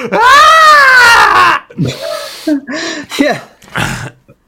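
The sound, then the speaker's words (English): A voice imitates a wounded woman's scream: one loud, drawn-out wailing cry, followed by several shorter, broken moaning sobs and gasps. “Splattering all over the place, and she screams.”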